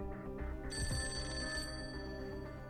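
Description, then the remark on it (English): A home telephone rings with a bright electronic trill, sustained tones layered over a steady low hum, continuing without pause across the few seconds with no voices present. “Can you get the phone?”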